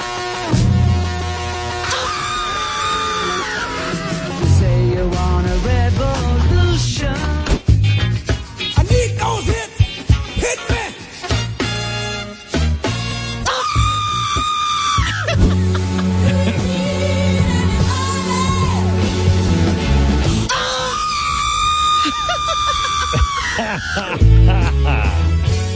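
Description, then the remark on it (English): A woman's shrill, sustained scream, sent in by fans, is spliced into famous upbeat songs with a thumping bass beat, bursting out loudly several times over the music like a comic remix. “her scream inspired fans to send in drops of her scream mixed into famous songs.”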